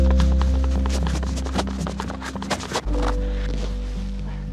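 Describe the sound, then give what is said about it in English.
Hooves of Rainbow, a pregnant cow, clop and scuff on a hard surface in a loose, uneven walking rhythm, over a steady low droning hum in the background. “Rainbow is a very special cow that I met when she was only 1 day old.”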